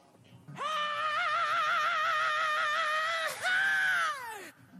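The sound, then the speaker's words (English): A singer's loud, sustained scream in a recorded song, held with a wavering vibrato for nearly three seconds, then a brief break before a second long wail that bends downward and fades out. “Oh, we gotta isolate that scream.”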